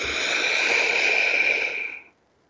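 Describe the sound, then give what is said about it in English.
A single long, deep, purposeful breath taken during a guided breathing exercise: a steady, airy rush lasting about two seconds, fairly loud and unbroken, then it tapers off into silence. No talking. “So let's take a really purposeful, deep, mindful breath.”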